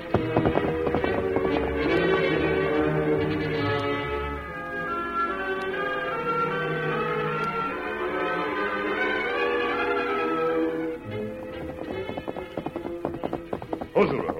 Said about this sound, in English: As he reached for the first horse, Silver sounded an alarm. What is it, Silver? And then a moment later, the Lone Ranger heard approaching hoofs.